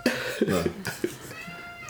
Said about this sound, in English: Oh, hey, buddy. My cat has something to say about that. He don't like really it. He's really upset about it.